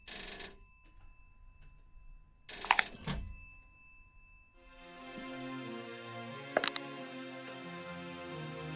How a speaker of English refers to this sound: Phone's ringing again. Fucking phone again. Fucking goddammit. You wonder why that phone's even in your apartment.